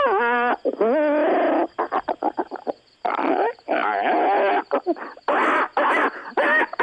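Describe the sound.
A female caller loudly imitates monkey calls, a run of shrill hoots and screeches in quick, uneven bursts, with rapid chattering in the middle and no ordinary speech.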